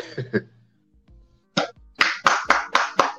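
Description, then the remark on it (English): A few brief vocal sounds, then a single sharp clap, followed by a steady, fairly loud run of about six evenly spaced claps or taps. “There you go. Claps and taps.”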